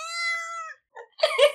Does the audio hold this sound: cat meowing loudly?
yes